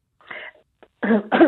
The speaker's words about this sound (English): Sorry, just coughing.